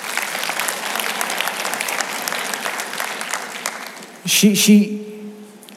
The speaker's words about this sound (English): Will y'all give her a round of applause?